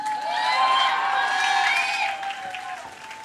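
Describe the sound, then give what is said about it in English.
A crowd claps and cheers steadily, with high whoops and shouts rising over dense applause, fairly loud throughout and easing off slightly near the end. “Ay, adhu clapping ah illaya?”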